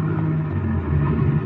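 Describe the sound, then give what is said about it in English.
A car engine rumbles steadily out in front, a low throaty drone with a slight rise as the car pulls away. No voices, just the continuous motor sound. “Car pulling away out in front.”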